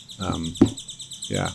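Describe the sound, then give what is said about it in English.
Birds chirp loudly and continuously, a dense, rapid twittering that runs throughout, with brief bursts of a person's voice underneath. “loud birds.”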